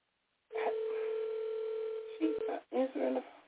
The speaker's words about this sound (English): phone is ringing, so hopefully she will answer.